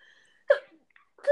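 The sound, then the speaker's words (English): A single abrupt, fairly loud sneeze bursts out of near silence, followed by a short pause before a voice starts to speak at the very end. “Sorry, sneezing a bit.”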